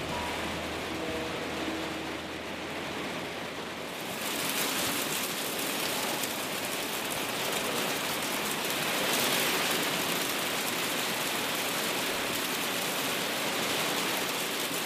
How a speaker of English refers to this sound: Lovely weather you've got here, Brody. Four seasons in a day. Just a wee hailstorm.